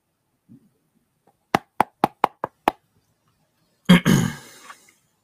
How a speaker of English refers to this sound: Okay, before I go into that, let me cue the cash register sound effects.